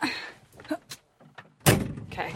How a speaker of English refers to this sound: closing the door. I am in.